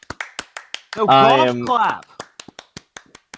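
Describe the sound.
A quiet golf clap: soft, thin pats of two fingers on a palm in a steady, fairly quick rhythm, pausing while a voice sounds a drawn-out note, then resuming.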